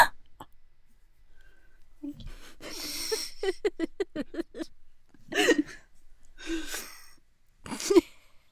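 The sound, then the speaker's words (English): A loud, exaggerated gasp, a sharp breathy intake of air, followed by quick rhythmic breathy bursts and a few more theatrical gasps spaced apart, vocal, with no clear talking. “If you're going to gasp, gasp properly, please.”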